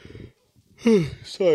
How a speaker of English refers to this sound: Sorry. Already yawning.